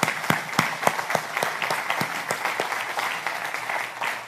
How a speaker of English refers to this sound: Now, I think it's awesome that we have our kids here with us. Can we give them a round of applause, too?